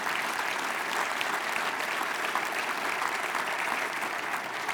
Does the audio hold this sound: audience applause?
yes